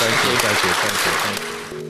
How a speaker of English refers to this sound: Well, thank you for coming, and can you please give a warm round of applause?